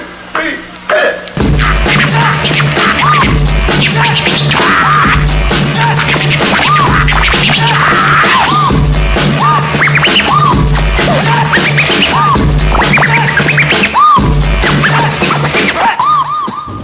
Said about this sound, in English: Can I get some? Bring that beat back. Yeah. I want to hear that beat, right? We're going to bring it back now. Bring that beat back.